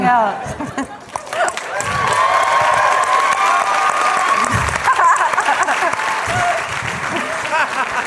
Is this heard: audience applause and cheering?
yes